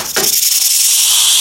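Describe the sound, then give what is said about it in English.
A rattlesnake's dry, continuous buzzing rattle from a bee box that has just been opened, loud, starting right after a brief knock and holding steady without pause; no one speaks. “got bit by that rattlesnake”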